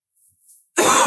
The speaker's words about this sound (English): Excuse me, as I cough again.